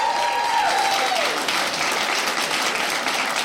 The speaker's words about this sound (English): Parents, round of applause. Where are you at, parents? Round of applause.